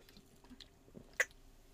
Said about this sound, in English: Take a sip of this.